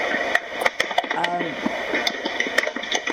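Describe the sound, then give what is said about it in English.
Keyboard typing: a string of sharp, irregular clicky taps, a dozen or so in quick uneven rhythm, heard over a steady background hum with a brief stretch of faint voice in the middle. “Could whoever's typing stop typing, because it's making a funny noise.”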